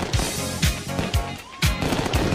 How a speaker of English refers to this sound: And in honor of this celebration, I'm not normally a big fireworks guy. They're kind of lame, but sometimes it calls for them. The fireworks, let's go, baby.